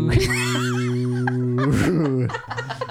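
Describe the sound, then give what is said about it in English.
A man's voice makes a long, low, droning moo imitating a cow, held steady for about two seconds, followed by brief laughter and murmuring. “Just do a normal moo.”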